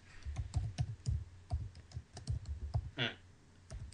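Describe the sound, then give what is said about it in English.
Rapid, uneven, loud clacking of keys on a computer keyboard, typed with two fingers, with one heavier, longer key strike partway through; no one speaks. “Is that what you're typing?”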